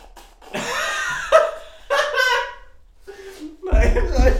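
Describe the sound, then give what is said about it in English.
Laughter and voiced chuckles come first, then a loud, breathy burst of someone blowing their nose near the end. “Sorry, I have to blow my nose.”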